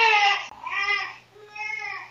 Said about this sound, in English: That's my actual baby. That's an actual baby. That's an actual baby. Hey, and for all the people that think that she's just like ignoring her newborn baby crying, dad is on it. Yeah. Dad has the bottle. Dad is taking care of it.